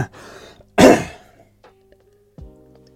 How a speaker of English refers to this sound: But that's me pushing past being uncomfortable with, you know, clearing my throat and then editing it out.